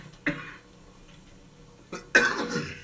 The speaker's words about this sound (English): Y'all forgive me for this coughing. But this medicine is strong.